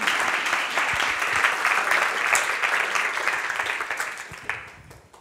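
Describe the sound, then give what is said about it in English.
An audience claps steadily for the kids and young people, a dense crackle of many hands that holds even for several seconds before thinning and fading away at the end. “Shall we give our kids and our young people a round of applause?”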